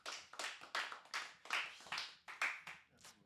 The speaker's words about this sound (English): Just quick little round of applause, you know, for this episode.